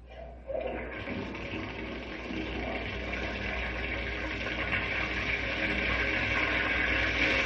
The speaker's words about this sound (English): And now you'll notice that a model dam has been built across the Shady River. Yes. Mm-hmm. Now, when I open the faucet and let the water flow into the river, the dam stops the water all right.